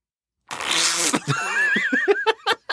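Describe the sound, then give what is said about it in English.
A short, raspy fart rips out loud, then breaks into a burst of high, squeaky giggling laughter. “there is times where she kind of like positions herself to get ready for the fart and how we are literally just waiting for her to fart.”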